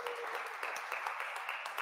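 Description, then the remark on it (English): An audience claps together in steady, dense applause, many hands producing a continuous crackling wash of sharp claps with no pauses. “Come on, give them another hand clap while they're there.”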